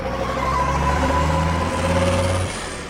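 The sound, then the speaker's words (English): A heavy tanker truck engine revs with a loud, steady droning rumble, then drops off abruptly near the end as the truck pulls away. No one speaks. “She's transformed into a flus truck! And she's getting away with my flus!”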